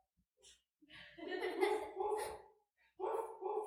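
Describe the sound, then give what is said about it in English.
A person's voice imitates a dog barking: a short yip, then a long, drawn-out bark-like howl, a brief pause, and two more quick barks. “Yoda, bark.”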